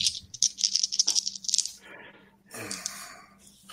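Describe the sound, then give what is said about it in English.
Dice rattle in a quick, bright clatter of clicks for over a second, then a softer scattered rolling and tumbling sound follows as they settle; it is a lucid dreaming roll in a game, and the result is an 8. “This is a lucid dreaming roll.”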